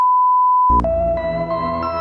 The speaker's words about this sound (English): Radio Paranormal Singapore, voicemail. Leave your message at the beep.